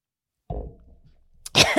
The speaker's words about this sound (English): I almost just choked. Sorry, everyone on Patreon got to see that. I was hiccuping as I was swallowing water.